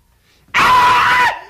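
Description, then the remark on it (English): A man lets out a single loud, sustained, piercing scream of exaggerated agony, a mock imitation of someone being tortured, lasting under a second before cutting off abruptly. “And then he would just start screaming.”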